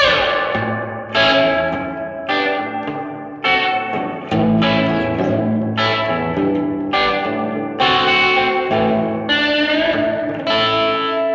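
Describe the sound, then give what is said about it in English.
An electric guitar, played through a Zoom multi-effects pedal on its Spring Reverb model with only slight gain, strums a series of bright chords roughly every second, each washed in heavy spring-style reverb whose lingering tails blur into the next strum. It plays loud, with no talking. “And what I had the Zoom running with tonight is, it is just the Spring Reverb model that's on it.”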